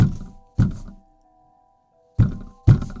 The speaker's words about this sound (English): The car wouldn't start, and we heard something banging on the back of the car. It wasn't a constant bang, but every few seconds or so, we'd hear it.